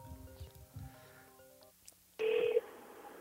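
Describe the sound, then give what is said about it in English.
A phone rings with an incoming call: steady electronic tones hum over a low rumble, then a loud, bright ringtone burst cuts in near the end and holds briefly. “Getting a phone call.”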